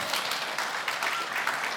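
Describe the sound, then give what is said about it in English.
A church prep team claps steadily, a dense, even patter of many hands at moderate volume with no voices rising above it. “That was our prep team clapping right there.”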